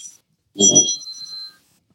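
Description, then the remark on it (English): A short electronic alarm sounds once, a bright high-pitched tone lasting about a second with a dull knock at its onset, otherwise quiet around it. “That I should have the alarm off.”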